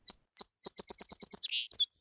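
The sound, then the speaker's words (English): A sparrow tweets in a quick run of bright, high chirps, starting with a few spaced notes then speeding into a rapid series, ending with a short trill, clear with no other sounds. “Little Bird tweeted out her agreement.”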